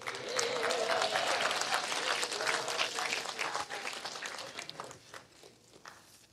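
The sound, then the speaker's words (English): Audience applause in a church: many hands clapping in a dense, steady burst that holds for several seconds before thinning out and tapering off. A faint cheering voice rises briefly near the start. “People are like, "I don't think we should clap when she's clapping."”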